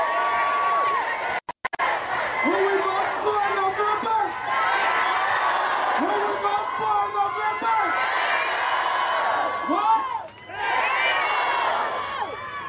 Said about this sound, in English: Oh, so there you go. The crowd goes wild for Beto O'Rourke.